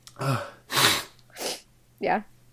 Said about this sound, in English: Now you're sniffling, too. That was just, like, just normal sniffles. Just regular sniffles. No, by the end of the day, I'm, like, pretty sniffling. I can't tell if it's, like, allergies or my contacts have just been in too long.